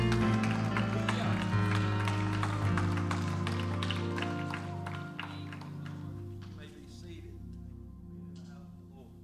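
A church audience claps hands for the Lord: a dense, uneven patter of sharp claps over a sustained low, tonal drone that gradually thins out and softens toward the end.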